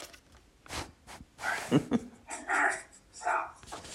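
A dog whines and gives a few short, excited yips and barks at close range, spaced over a few seconds, with soft rustling and shuffling noises in between.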